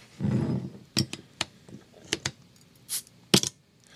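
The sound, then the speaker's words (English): A Polliner München Oktoberfest Märzen beer is opened: a low rustle, then a series of sharp metallic clicks and clinks, a short airy hiss, and a final bright double snap, with no one talking. “Let's see how this sounds when we open it up.”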